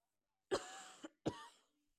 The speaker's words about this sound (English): I'm gonna chat in this too because my voice is starting to crack. And I got a cough. Excuse me.